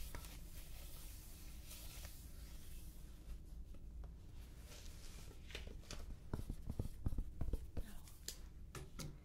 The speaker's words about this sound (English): Let me just write a few things down about what we're gonna do. And then we will begin.